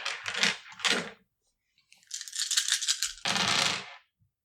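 Dice being rolled in a game, with a highest roll of 5: they rattle in bursts, two quick shakes, a pause, then a longer clattering rattle that cuts off sharply, followed by one last tiny click. No one speaks.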